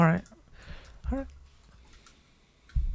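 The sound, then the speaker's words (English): Soft, irregular clicks of typing on a computer keyboard, with brief bursts of voice interrupting now and then. “Yeah, because I'm typing it out.”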